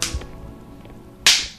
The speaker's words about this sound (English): Ow. Ooh, payback. Cool. That wasn't a real slap.